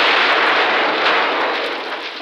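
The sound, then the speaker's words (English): An explosion of the robot character Heck Gently sounds as a loud, dense roar of noise that holds steady for about two seconds before tapering off slightly at the end, with no voices. “Heck exploded!”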